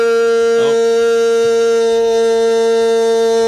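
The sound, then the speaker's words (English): A loud, unbroken honk drones on at one steady, buzzy pitch for the whole stretch, never pausing or wavering, with only a faint brief murmur underneath. “The honking goes on for an excruciatingly long time, so I'm going to fast forward.”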